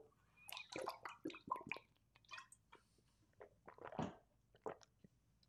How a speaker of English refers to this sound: Let me take a drink of water here. Good old H2O.